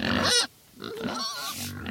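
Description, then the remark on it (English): Pigs grunt and oink, a loud squealing burst followed by a short pause, then more snorting grunts and squeals from several animals. No one speaks. “And the only job he could find was cleaning out pigs.”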